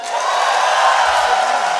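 A live audience at a PAX stage show applauds and cheers, a dense, steady wash of clapping and crowd noise that stays loud throughout the short burst.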